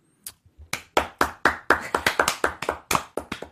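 A short burst of hand clapping, around a dozen sharp, bright claps at a quick, slightly uneven pace, moderately loud with no talking over it.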